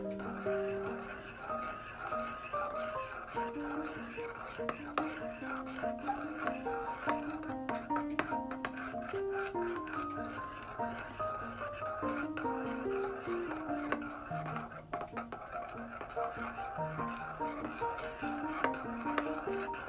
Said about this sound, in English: It's already gotten a little bit thicker. Not quite as thick as I like it. And it's not done yet, so. Just stir it for a little bit.